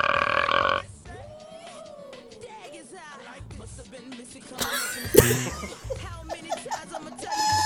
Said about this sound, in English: I feel like I got to play the burp a couple of times now because I fucked up.